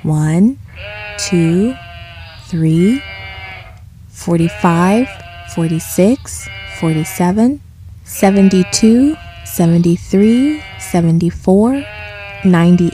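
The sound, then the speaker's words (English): A shepherd's flock of sheep bleat over and over in quick, overlapping bursts, several loud wavering calls, with brief pauses between clusters as the flock keeps calling. “Before he went to bed, the shepherd counted his sheep to make sure that they were all there.”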